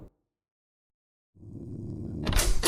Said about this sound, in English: Gust of chill air coming from my door being whipped open.